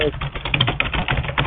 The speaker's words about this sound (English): You need a quieter keyboard. You sound worse than me.